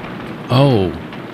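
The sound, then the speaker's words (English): Heavy rain pours in a steady, dense hiss from start to finish, briefly overlapped by a short voiced utterance in the middle. “Oh, it's turning off. Somebody turned off the faucet.”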